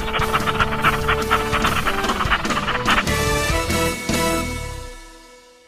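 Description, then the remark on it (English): A dog pants rapidly and steadily, a rhythmic run of quick breathy huffs that carries on for several seconds before trailing off at the end; no one speaks. “Get the stinky dog away from me.”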